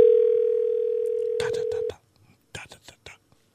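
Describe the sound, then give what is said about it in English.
A steady, loud telephone ringing tone sounds for about two seconds, on an unanswered call put through to the automotive department at 6:20 in the afternoon, then cuts off; voices talk briefly over its end and in the quiet that follows. “Oh, my God, the phone's ringing in automotive.”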